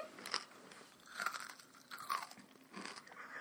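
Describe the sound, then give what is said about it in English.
Crisp crunching bites into a candy bar, the giant middle part of a Butterfinger, several sharp brittle crackles followed by chewing, loud with no talking. “That was a big old crunch.”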